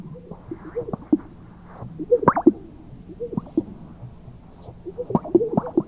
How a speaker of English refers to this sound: Finally, chest sacs, sage grouse.